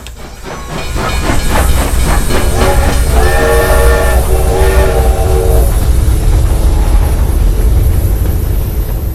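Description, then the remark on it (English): A train pulls in with a loud, continuous hiss of steam and rumble, while a chord-like horn blares for a few seconds in the middle before fading back into the hissing. “Space train, he whispered. That's it. That's the signal.”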